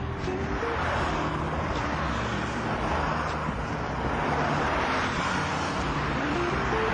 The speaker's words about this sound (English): Here we go. So we're on the Harbour Bridge now. Cars everywhere. Auckland City. Woo! Have a look.